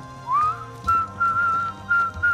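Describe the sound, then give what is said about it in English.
A person whistles a tune alone while trudging through the desert towards the Copper Mountains, a rising note sliding into a series of steady, held tones in short phrases, clear. “I whistled his namesake song as we trudged through the desert towards the Copper Mountains Nico was probably grazing on.”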